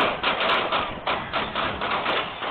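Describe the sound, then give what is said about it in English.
Gunshots ring out in a rapid, uneven succession of sharp pops, dense and muffled, one after another with no pause for a couple of seconds, captured on video at Kansas City's Union Station as the Super Bowl parade ended. “Cousin thought it was firecrackers, sound captured on video from TMZ.”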